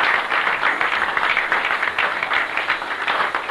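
A crowd applauds steadily, a dense wash of many hands clapping at once, loud and sustained without pause for several seconds, with no voices rising above it.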